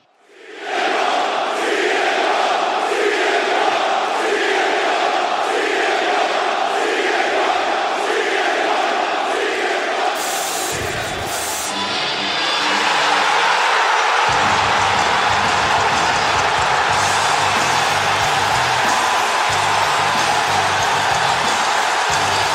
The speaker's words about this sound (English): And that is the sound of 16,000 people all coming at the same time. Yeah, holy shit. That fucking, that roar from the crowd. I mean, it's almost like, that's some intense fucking energy. It's almost like terrifying how intense that energy is.